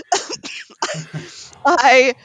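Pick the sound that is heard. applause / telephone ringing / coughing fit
coughing fit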